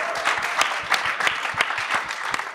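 Steady applause from an audience fills the room, dense overlapping claps sustained at an even level throughout without any voices on top.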